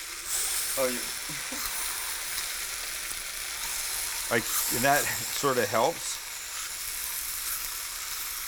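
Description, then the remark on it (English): Bologna sizzles steadily in a frying pan for a fried bologna sandwich, puffing up as it cooks, a constant bright crackling hiss running the whole time, while people talk briefly over it in short bursts. “Fried Bologna Sandwich”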